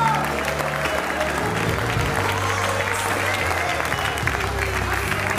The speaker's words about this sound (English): Now, right where you're standing, give the Holy Ghost a welcome clap of praise.